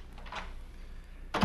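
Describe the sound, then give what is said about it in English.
A side door creaks open with a brief scraping sound, then after a short pause slams shut with a solid thud. No one speaks. “If you go out the side door there, Mr.”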